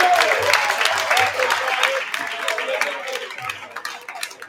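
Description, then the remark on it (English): An audience bursts into dense applause for the coaching staff as they are called up, many hands clapping in a busy crackle that starts loud and gradually thins out. A few whoops and indistinct voices rise over it. “Yeah, can we clap them up here?”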